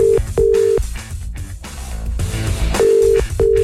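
Outgoing-call ringback tone: two short pairs of steady, mid-pitched electronic rings separated by a long pause, the call going unanswered, with a muffled busy background underneath and no one speaking.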